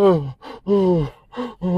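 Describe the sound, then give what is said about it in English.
A voice imitates the heavy, panicked breathing of someone waking in a cold sweat in a bedroom: five loud gasping groans in quick, uneven succession, each pitched and strained, with brief pauses between them. “You're just breathing bare heavy in the bedroom, bro.”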